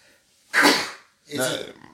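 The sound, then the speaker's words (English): Two sneezes in quick succession, each a sudden loud burst of breathy noise that fades over about half a second, the second slightly softer and rougher than the first. “Oh, hold on. I got to sneeze.”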